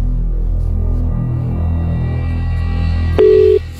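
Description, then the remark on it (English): A steady, throbbing low hum runs throughout, then near the end the ringback tone of an outgoing phone call cuts in: a clear, loud, steady electronic beep followed by the start of a second ring, with no voices. “Okay, it's ringing, which is a good sign.”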